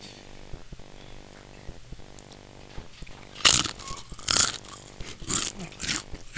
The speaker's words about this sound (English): Sure, that's gonna be awesome. Be some straight ASMR crunch. It's gonna be so awesome.